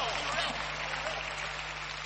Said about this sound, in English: You clap well. Clap well. Clap, clap, clap. It's a good message. Clap.